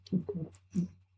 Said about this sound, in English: I immediately got you the burps, huh? Yeah, I think that's because I like to eat too fast and drink too fast, but it tastes good.